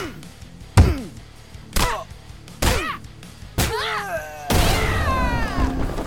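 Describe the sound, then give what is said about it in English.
In a video game, four sharp, heavy punch impacts land about a second apart, each trailed by whooshing, swept tones, then a long bright rising shimmer swells and sustains as the character Dahlia's meter fills up. “The act of building up the meter would sound like the following.”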